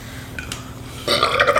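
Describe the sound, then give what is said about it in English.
A loud, rough burp erupts after a second of near quiet, its rasping tone layered with several shifting pitches as it rumbles on. “Excuse me. Wow, man, it was like layers in that.”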